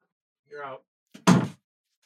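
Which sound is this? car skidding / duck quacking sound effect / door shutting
door shutting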